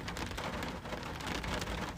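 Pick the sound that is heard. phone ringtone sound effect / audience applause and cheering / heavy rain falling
heavy rain falling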